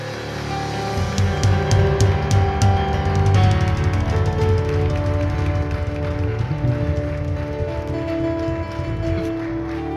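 A crowd claps steadily for about ten seconds to welcome a pastor, a dense, even wash of applause with sharper individual claps early on, over a low sustained musical hum.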